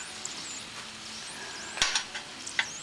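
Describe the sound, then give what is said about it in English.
Egg rolls frying in a pan in very little oil, browning on one side: a steady, hissing sizzle of hot oil with faint crackles, broken by a few sharp metallic clicks of a utensil against the pan. No one speaks. “Let them get brown on this side.”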